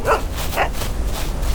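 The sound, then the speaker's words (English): A puppy named Buzz, only a few minutes old, gives two sharp, high-pitched yaps in quick succession as he fetches a snowball, followed by a couple of fainter little barks over a steady background hiss. “Only a few minutes old and he already knows how to fetch.”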